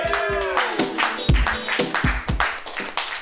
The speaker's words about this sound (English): Like, come on. Clap it up one more time